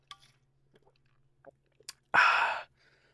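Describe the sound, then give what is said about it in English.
Someone takes a drink of water: a few soft, quiet sipping and swallowing clicks, then one short, loud, breathy exhale afterward. No talking. “Water break.”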